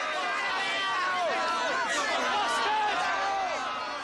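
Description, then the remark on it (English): An angry crowd at a tennis club shouts abuse and jeers while thumping at the wire and shaking the fence, many voices overlapping into a loud, continuous uproar that stays intense for the whole stretch. “The ones who are thumping at the wire, shaking the fence, hurling abuse?”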